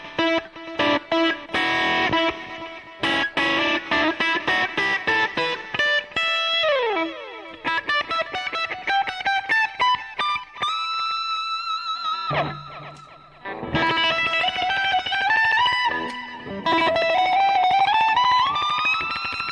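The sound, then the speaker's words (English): An electric guitar played alone through echo and delay effects, with bright repeating notes, swooping pitch bends and a brief low drone, the sound echoing and layering on itself, fairly loud. “I love playing with echoes, delays.”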